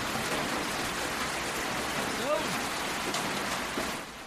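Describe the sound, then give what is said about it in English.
Steady rain patters on a shed roof in a dense, continuous hiss that barely changes, with a brief spoken word rising over it partway through. “Throughout this whole episode, I'm just going to have rain just falling on the shed.”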